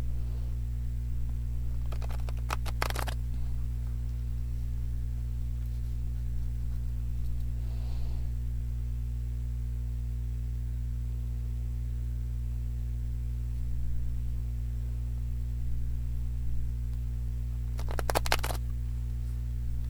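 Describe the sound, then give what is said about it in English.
Tarot cards are shuffled in two short, crisp riffling bursts, one near the start and one near the end, over a steady low electrical hum with no talking. “ground and shuffle the cards and energy for the highest good of all, most benevolent outcome for all.”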